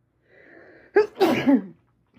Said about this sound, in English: I had to sneeze real bad. I'm gonna sneeze again. God bless me. And I always sneeze in threes, so it's guaranteed another one is coming. Here we go. Told you.